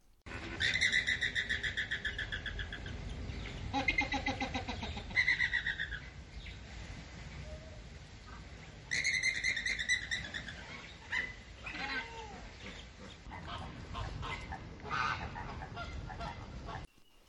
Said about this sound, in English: But yes, it's flamingos.